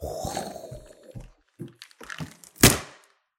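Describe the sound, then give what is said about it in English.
Crinkly crunching and scattered thumps as a makeshift hideout, a 'hobbit hole', is pushed around, building to one loud, sharp crack near the end as it breaks from being crunched too much, before fading out. “I just came out of my hobbit hole and I actually broke it. There's a big crack in here now because I crunched it too much.”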